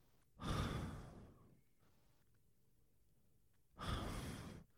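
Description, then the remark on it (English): A person imitates their own heavy, slow mouth breathing while asleep: two loud, airy breaths separated by a quiet pause. “Just heavy mouth breathing.”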